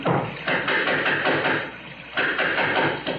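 A series of heavy, evenly spaced knocks on the door of a house on a rainy night, about two per second, thudding loudly over a constant background hiss with no voices.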